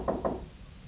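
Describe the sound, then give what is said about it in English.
Two quick knocks on a door, a sharp double rap close together, followed by silence with no voices. “Daddy just said he wished you'd knock on the door, and you did.”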